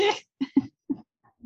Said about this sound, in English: Nay. God, I wasn't expecting that. Ha, I have headphones on and there are neighing sounds in the background.